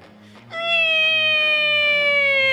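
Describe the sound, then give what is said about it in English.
A person vocally imitates a racing car engine with one sustained, loud, whining tone that starts half a second in and slowly drops in pitch. “That's quite a good car noise.”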